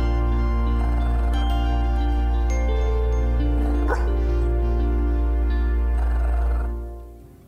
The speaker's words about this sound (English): my dog just kept like growling and barking when I was doing the vocals for this song